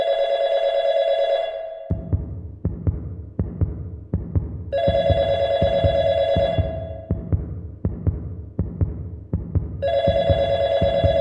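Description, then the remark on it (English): A telephone in an apartment rings in three long, bright bursts about five seconds apart, with a steady, deep heartbeat-like thumping pulsing through the quiet gaps between rings. No one speaks. “I walked in the door, set the paperwork down in preparation for scanning, and the phone rang.”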